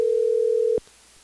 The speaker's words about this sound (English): So let's go ahead and listen to the phone ringing here.